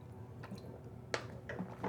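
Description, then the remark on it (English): Someone drinks coconut water, with a few soft, wet sipping and swallowing sounds spaced about half a second apart over a quiet background and no talking. “Sorry, I'm drinking my coconut water.”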